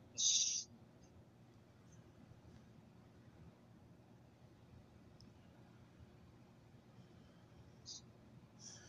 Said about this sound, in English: Yeah, bird.